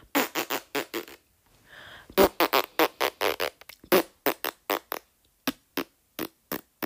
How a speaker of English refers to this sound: Oh my god, fart noises. That's the funniest shit, man. Funniest shit.